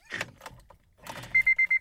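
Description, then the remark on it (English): Rustling and clattering give way to four quick, evenly spaced electronic beeps from a car key fob remote kept in a person's underwear, loud, with no talking. “And people are like, oh, excuse me, your crotch is beeping.”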